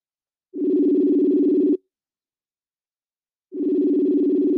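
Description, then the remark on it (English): Two long ringback tones sound on an outgoing phone call, each about a second and a quarter, separated by a silent pause of nearly two seconds, steady and fairly loud. “Let me see if he pick up.”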